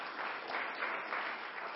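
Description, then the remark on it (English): A crowd claps together in steady, dense applause, a continuous wash of many hands for a couple of seconds with no voices standing out, applauding the news that Jesus Christ is coming back. “That deserves an applause. Yeah, I'll give it an applause.”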